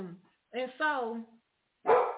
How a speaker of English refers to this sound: He barking because you got that thing around you. Mm-hmm. And so, hey, stop it.